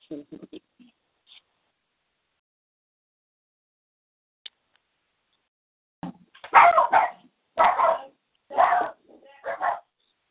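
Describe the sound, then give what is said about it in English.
Dogs bark in a loud run of four or five sharp, closely spaced barks near the end, following a mostly quiet stretch with a few faint, brief sounds at the start. “I guess the dogs agreed.”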